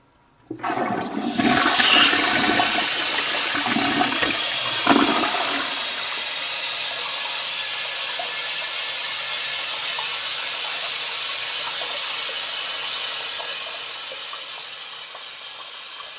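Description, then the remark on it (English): A toilet flushes in a house in Los Angeles with a loud rush of 5.7 gallons of water, followed by a long steady hiss of the tank refilling that slowly fades toward the end. No one speaks. “That's the sound of 5.7 gallons of water leaving my house through a sewer to the river and returning to my house through a pipe in the toilet from the river.”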